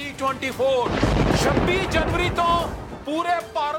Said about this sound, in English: The videos are fiery and a bit odd. Lightning and thunder are badly edited into one video discussing a non-binding referendum campaign for Khalistan.